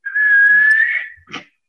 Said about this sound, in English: My whistle's busted. I'm not going to be able to ref this game. Let me check mine. It's barely working.